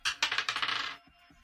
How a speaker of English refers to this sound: Shit, I dropped the dice on the floor.